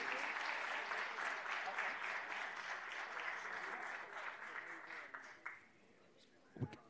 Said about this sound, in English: is our honor and our privilege to recognize the women of Delta Sigma Theta Sorority Incorporated, and join me in giving them a round of applause for all their contributions to Clark County and abroad.